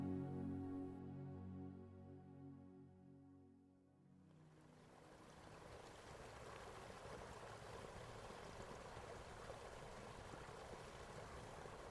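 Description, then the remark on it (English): A soft sustained tonal drone fades out over the first few seconds, giving way to a steady, continuous rush of the River Boyne flowing through a little valley in Ireland on a crisp winter evening, carrying on evenly to the end, with no voices. “Feel the invigorating breeze draw you to a little valley and the banks of the River Boyne.”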